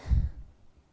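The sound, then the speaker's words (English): A single short, throaty snort, like someone imitating a snore, with a low rumbling burst that quickly fades into near silence. “And then you hear that strange rhythmic noise of snoring.”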